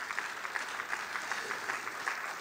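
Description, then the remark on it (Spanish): An audience applauding people from Campo Alegre and their pastor, a dense wash of many overlapping claps at an even, moderate loudness with small irregular peaks, and no speech over it. “Oh, si le va a dar un aplauso, no me deje aplaudiendo a esa gente sola, especialmente al pastor, por favor.”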